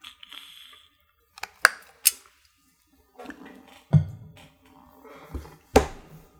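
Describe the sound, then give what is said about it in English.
Someone takes a brief drink of water: a few sharp clicks and taps of a glass, soft low thumps as it is handled and set down, and quiet swallowing, with no talking. “Excuse me as I take a brief drink of water before beginning this message.”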